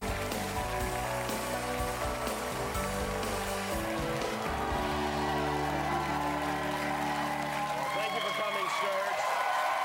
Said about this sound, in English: By the way, what is this fucking applause break? You don't get this applause break for the job Biden has been doing.